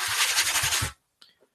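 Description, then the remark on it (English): Rosin rubbed briskly along a bow: a loud, hissing scrape in rapid back-and-forth strokes for about a second, then silence broken by two faint, brief high-pitched ticks. “Just rosining up the bow here.”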